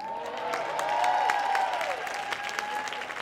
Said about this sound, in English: Yeah, you can cheer louder than that.